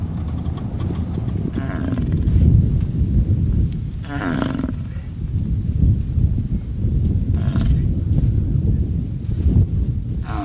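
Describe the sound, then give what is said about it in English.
A herd of over 800 bison, released by the American Prairie Foundation, moving across open prairie, with a steady low rumble and deep bellowing grunts rising now and then over the continuous din. No one speaks. “This herd has grown to over 800 bison”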